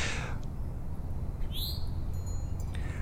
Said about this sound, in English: So I can hear the birds in the trees, and I can hear someone jogging.